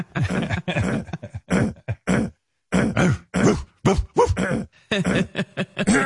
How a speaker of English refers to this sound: He's clearing his throat like crazy because he's excited.